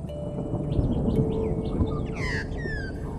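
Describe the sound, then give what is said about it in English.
An Australian magpie calls with a few bright, warbling notes, fairly clear, over a steady low outdoor rumble. No one speaks. “When the first settlers people arrived in Australia and they were black and white birds, they called them magpies.”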